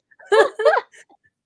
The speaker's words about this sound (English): Let me clear my throat.